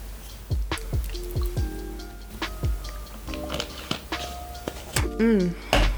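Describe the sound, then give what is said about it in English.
Wet sipping of the last of the water from a water bottle: a string of quick, drip-like pops and small bubbly glugs, ending in a short burst of gurgling. “I'll even take the last little sip of this water bottle just so you guys can even take a little break for yourself.”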